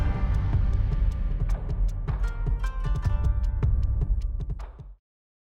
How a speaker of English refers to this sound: I mean, the bass tones and the fierceness coming out kind of get you like a little bit, I don't know if I want to be pumped or I'm like inquisitive or draw me in.